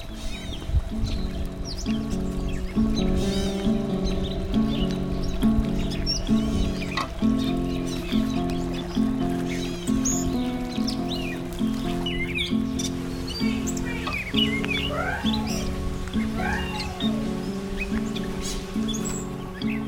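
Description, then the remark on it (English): Bright little bird chirps and tweets flit about at moderate volume over a steady, rhythmic musical backdrop, continuing irregularly throughout with no talking. “Once upon a time, there was a little bird.”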